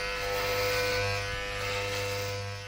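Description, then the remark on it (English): Electric hair clippers buzz steadily with a strong low hum and bright tonal whine, holding an even, continuous drone with no talking over it. “You hear that noise? Fritz, we getting into the barber chair now.”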